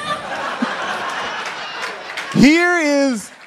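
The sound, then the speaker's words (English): An audience applauds with a steady, diffuse patter mixed with crowd murmur, then one loud voice cuts in with a drawn-out call that rises and falls in pitch. “Don't applaud that.”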